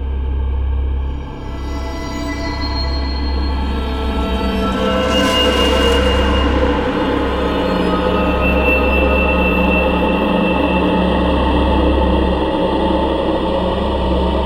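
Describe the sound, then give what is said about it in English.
A train engine rumbles loudly and steadily throughout, a deep idling drone with a brief hissing burst midway. No one speaks. “All aboard.”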